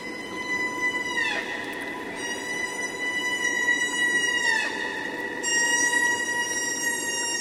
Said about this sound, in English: Lisa Walker recorded this chorus of humpback whales in the Pacific off Alaska.